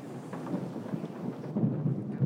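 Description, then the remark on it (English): A thunderstorm with low, rolling thunder rumbling steadily under a hiss of falling rain, fairly loud, swelling slightly toward the end with no voices. “The WHO's mask guidance reminded us a bit of that stormy scene in The Godfather.”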